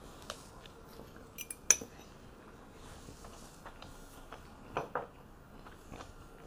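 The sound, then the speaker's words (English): Cutlery clinks and scrapes against plates during a meal of leek cuckoo with barberries, with scattered sharp metallic taps, one louder clink near the start and a quick pair of clatters later, over a low hum. “Cuckoo, what are you guys eating today?”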